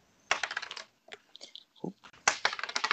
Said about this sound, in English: No, not behind the desk. Shit, bye-bye new dice.